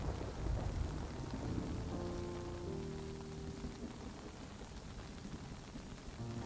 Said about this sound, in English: Feeling every tap from every raindrop that falls from above.